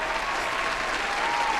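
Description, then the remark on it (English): A brief burst of dense applause from a crowd, steady and fairly loud throughout, with many hands clapping at once and no voices. “Congratulations. Here is your round of applause.”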